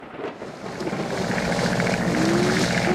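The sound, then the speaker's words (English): A loud, steady aircraft engine drone mixed with rushing storm noise as the aircraft, caught in a storm, loses altitude fast and heads for a crash, swelling slightly over a few seconds, with a faint rising engine whine underneath and no voices. “Mayday, mayday, we're caught in a storm, losing altitude fast.”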